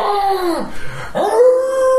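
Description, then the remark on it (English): A werewolf howls: a loud, sustained howl with rich harmonics dips and breaks into a brief low growl, then rises again into a long steady wail, with no talking. “But that he still howls.”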